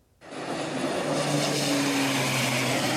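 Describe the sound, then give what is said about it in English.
A loud, steady roar of low-flying Air Tractor propeller firefighting planes skimming Otter Lake in British Columbia, just meters above people at the beach, fighting a wildfire near Colmont, with a rising engine drone and tonal whine sweeping overhead. No voices. “Air tractors were skimming Otter Lake.”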